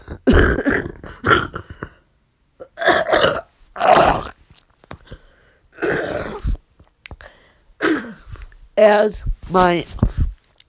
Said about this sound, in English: And I completely apologize for the coughing attack